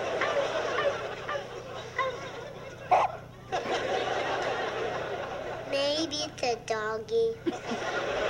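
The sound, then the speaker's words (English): A voice imitates a dog barking with a quick series of short, yappy barks, fairly loud, preceded by a few seconds of murmuring, chattering background noise. “Did Bunny Rabbit just bark?”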